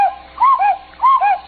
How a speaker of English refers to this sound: As I entered the drawing room, the cuckoo clock struck three.